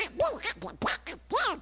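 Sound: cartoon duck voice imitation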